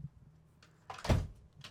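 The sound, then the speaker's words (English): A quick clatter and soft thud as clothes are knocked off a rack, with a short rustle after. It's brief, and nobody speaks. “Well, you just knocked all the shirts off.”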